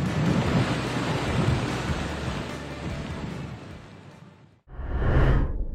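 Loud, roaring storm noise of Hurricane Ian on Florida's northeast coast, with heavy rain and strong wind and a deep rumble running underneath; after a brief drop-out, another powerful gust of wind-driven rain surges up.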